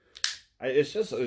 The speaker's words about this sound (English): I just broke my phone case.